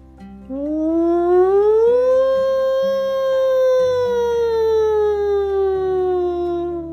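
A single loud, sustained evacuation alarm siren at the SpyKid's headquarters wails. It climbs in pitch over the first two seconds, then slowly sinks back down, holding steady for about seven seconds with a howl-like tone and no talking.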